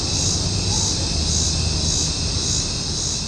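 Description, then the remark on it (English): A dense chorus of cicadas drones continuously at high pitch, swelling and fading in a slow, steady pulse, loud, with a low rumble underneath and no talking. “We want to know if this is an extraordinary year for cicadas.”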